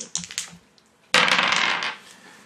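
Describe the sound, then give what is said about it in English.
A few light clicks, then a loud burst of dice rattling and tumbling across a hard table for about a second before settling, with no voices. “The dice like that idea.”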